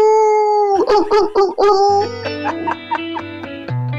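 A pop song intro plays loud and clear: a wavering, howl-like vocal line opens, then rhythmic pulsing synth chords and a deep bass come in. No one talks over it.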